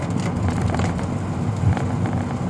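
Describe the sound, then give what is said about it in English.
Steady, dense rain drums on a car as it drives, a constant hiss and patter over a low engine and road rumble, loud and unbroken throughout. “It's really freaking raining, man.”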